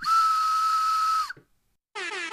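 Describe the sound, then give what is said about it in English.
A loud, steady whistle blast with a pure sustained tone cuts off abruptly, followed after a short gap by a brief, harsh blare like an air horn. “Were you going to play the whistle? Oh. Or the air horn?”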